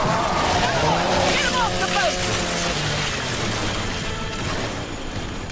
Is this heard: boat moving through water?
yes